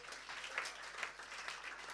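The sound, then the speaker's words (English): An audience bursts into steady applause as a clap offering to Jesus, a dense wash of many hands clapping together at once, sustained and even throughout with no voices heard over it. “Give a clap offering to Jesus.”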